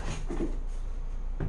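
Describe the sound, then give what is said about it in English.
A cat opens a cupboard door with a few soft wooden knocks and a brief creak, then climbs inside the cupboard, ending with another light bump. “He just opened the cupboard door and climbed inside the cupboard.”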